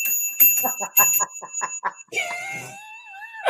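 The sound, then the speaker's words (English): A small, cheap bicycle bell is struck quickly about a dozen times, its bright ring lingering between hits, then a high, wavering wail-like voice takes over near the end. “So I have like a little cheap, real bell, like a bicycle bell. I ding that sometimes.”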